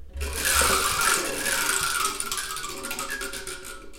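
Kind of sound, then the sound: sound effect, spinning wheel clicking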